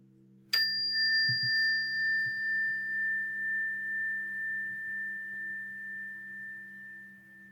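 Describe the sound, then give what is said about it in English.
A meditation bell is struck once to close a meditation practice and rings out with a clear, high tone that hangs and slowly fades, its pitch gently wavering as it sustains over a faint low hum. “And then just listening to this bell as a way of closing this practice.”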